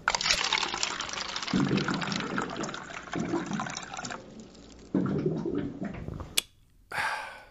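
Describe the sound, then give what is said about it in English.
Water streams steadily from a water cooler into a cup, with deep bubbling glugs rising every couple of seconds, then it cuts off abruptly, followed by a short splash near the end. “Just like you won't regret hearing this water cooler fact.”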